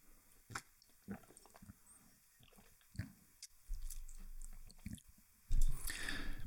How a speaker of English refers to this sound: Continuing on from that, I had another thought, but maybe I just need a sip of tea first.